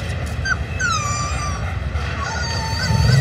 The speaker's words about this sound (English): Oh, it's a puppy! Not a puppy, a wolf. What now? He's a wolf, and that is its incredibly protective mother.